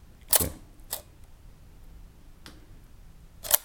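A large format 4x5 camera shutter fires with a sharp mechanical click and a second lighter click, then after about three seconds of quiet another crisp click closes the exposure, timed with a recorder's counter clock, for the photographer's first 4x5 lensed photograph.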